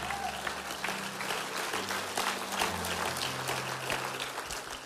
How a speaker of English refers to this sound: Come on, I think we should clap and thank God for His word today.